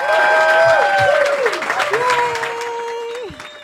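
A large crowd applauds loudly and steadily, with sustained whoops and shouted cheers rising over the clapping, easing off slightly near the end.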